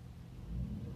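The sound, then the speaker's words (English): A deep, steady rumble of large trucks passing outside, swelling slightly partway through, with a constant low drone and no voices. “Now it's going to be quiet, and then there's like these big-ass trucks in the way.”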